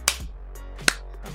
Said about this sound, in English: Two wrists together. Yo, wrist smack. Oh, that seems really spicy.